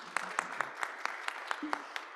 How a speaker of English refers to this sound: And do we have any newcomers with us today? And possibly some of you online, welcome. If we can join in applause for all of our newcomers.